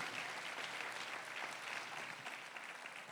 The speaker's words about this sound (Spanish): Dale un aplauso a Jesús. Go ahead and give Jesus a round of applause.